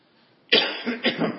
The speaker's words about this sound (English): Excuse me, this is the first time I really talked a lot in the last 10 days. I may cough a little bit yet this morning.